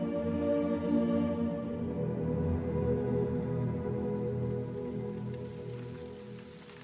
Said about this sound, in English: The morning rain clattered on the forest canopy and streamed between the leaves onto a muddy ground.